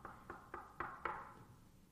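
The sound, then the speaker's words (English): Five evenly spaced knocks rap on a door in a steady rhythm, each with a short hollow ring that lingers and fades. The knocking is clear, with no voices. “And there's a knock on the door.”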